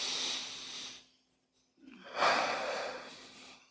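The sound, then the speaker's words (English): A deep, airy breath drawn in, a brief pause of silence, then a long, slightly louder exhale, with no talking. “Everyone take a deep breath right now.”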